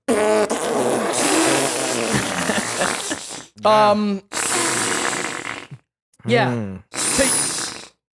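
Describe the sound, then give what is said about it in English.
A voice does a long, loud, sputtering fart impression for several seconds, then follows with a few shorter, buzzy bursts separated by brief pauses. “You know, you spend the fucking weekend together, you got fucking 72 hours of not farting, and then as soon as they leave, you're just like...”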